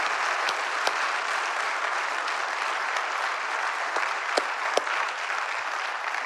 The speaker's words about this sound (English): Yeah, can we just clap now? Somebody started to clap. I love it.